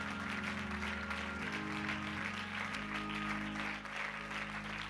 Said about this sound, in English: Would you clap your hands unto the Lord and give Him praise?